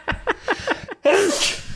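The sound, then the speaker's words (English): A run of five quick, rhythmic gasping inhales builds up, then a loud, wet sneeze bursts out, with no talking. “And then I sneezed.”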